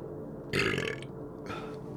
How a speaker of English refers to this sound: It's so like unsophisticated for me to burp in the middle of a podcast so much. I shouldn't really drink fizzy drinks. The thing is though, if I don't burp,